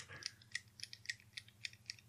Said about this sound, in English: I hear you clicking. What? I've taken five with my fidget cube, okay?